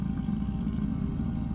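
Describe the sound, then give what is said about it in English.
A deep, menacing growl from a painting rumbles steadily for over a second, low-pitched and gritty, holding an even loudness with no voices or other sounds over it. “Anytime I got near it, it would grit and growl.”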